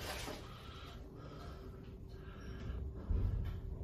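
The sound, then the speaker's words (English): A man breathes in slow, faint cycles over the steady low mechanical hum of a lift going up to the second floor, with a heavier thud of rumble near the end as the doors open. “Oh, it's just a man in a lift. It's just a man in a lift. You can hear breathing.”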